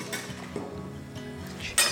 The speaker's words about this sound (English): Right, okay, we can. It's a bit of barley going onto the plate.